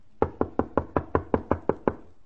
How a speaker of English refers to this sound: Oh, go ahead. Knock again.